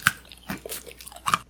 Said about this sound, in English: You know, cookie's nice, too. Listen to that. It's got a good crunch factor. I can hear it.